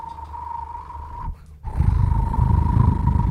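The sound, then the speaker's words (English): A voice mimics a car's deer whistle mounted on a side mirror: a steady, sustained high tone that drops out briefly, then resumes over a rough, growling low rumble that grows louder in the second half. “the deer alerts didn't work good at all”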